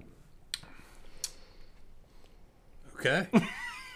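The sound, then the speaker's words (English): Bites into crisp pizza crust, the way Portnoy bites it: two sharp, isolated cracks, then a louder, denser burst of crunching near the end over a quiet background. “Hey, gotta bite the crust like Portnoy.”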